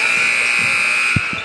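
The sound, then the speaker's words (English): A game clock buzzer sounds at the end of the third quarter of a Santa Fe Wildcats versus Hampshire Hawks game: a loud, steady, harsh electronic drone with a bright, buzzy tone that holds for the whole moment, with a couple of low dull thumps underneath near the end. “And he did not, Caden Counts did not see the clock as it expired here in the third quarter.”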